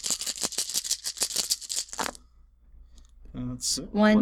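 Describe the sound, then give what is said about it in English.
Dice clatter and rattle in a quick, dense burst of clicks for about two seconds, then a short pause before someone begins talking. “Add three dice to your roll.”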